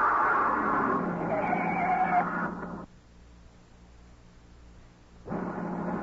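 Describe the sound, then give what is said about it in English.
A car's front tire blows out and the car is driven off the road down an embankment, a loud rough scraping roar for about three seconds, then a low rumble before the harsh noise returns. No one speaks. “It wasn't a shot. A front tire had blown out. He drove the car off the road down an embankment where we couldn't be seen.”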